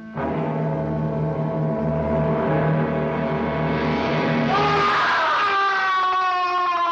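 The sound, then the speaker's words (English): A monster in a laboratory lets out a loud, anguished scream on finding its friend's lifeless body, deep and roaring at first, then climbing higher and shriller as it stretches on for several seconds without a break. “And screams.”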